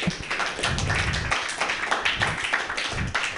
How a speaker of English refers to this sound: I had sex with an Australian today. Take a round of applause for that.